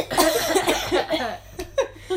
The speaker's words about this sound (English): I need to cough as well. Cough. Everyone cough.